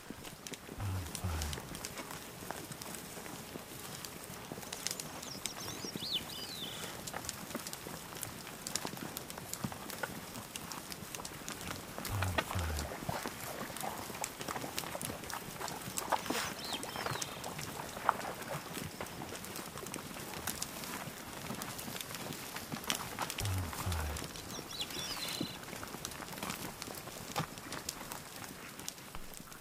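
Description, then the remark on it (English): A caribou herd on the move: steady, dense clatter of many hooves over a continuous rustling texture, with a few louder bursts and occasional faint human sounds. “Caribou.”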